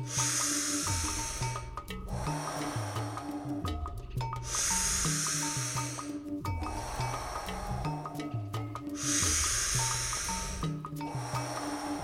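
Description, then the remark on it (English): Slow, deep breaths drawn in and pushed out in a steady rhythm during a guided breathing exercise, five more breaths in and five out, each a long airy hiss, clear, with a soft tonal background underneath. “Five more breaths in. Five more breaths out.”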